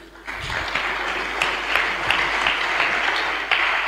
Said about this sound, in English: All those who are in our workers' congress, can you stand up? I thought you were clapping for them.